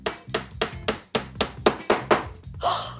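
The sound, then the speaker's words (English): A hammer drives a nail into a brick-sized, rock-hard block of compacted garbage with about nine sharp, loud, evenly paced blows, ending in a brief gritty crunching scrape. No one speaks. “Let's drive a nail through it and see what happens.”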